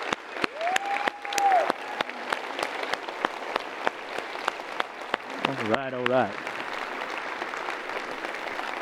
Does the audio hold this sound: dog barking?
no